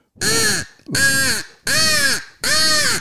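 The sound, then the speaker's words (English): Four drawn-out caws blown timidly on a hunting crow call, used as a locator call in turkey hunting, evenly spaced with short pauses between, steady in volume, with no talking over them. “But this crow call, a lot of people will go like this.”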